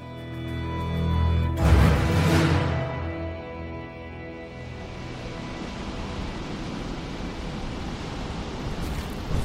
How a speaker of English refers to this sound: In fact, he found himself smack dab in the middle of a gnarly dust storm. This wasn't good. Not by a long shot.